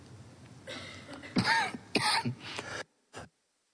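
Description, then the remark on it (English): A soft slurp as someone takes a drink, then a harsh fit of several raspy coughs and throat-clearing bursts from a person fighting a cold with a drying throat, ending with one short cough after a brief pause. “Excuse me, I just did a drink to my wife. That wasn't as subtle as I thought it would be, especially since I coughed afterwards.”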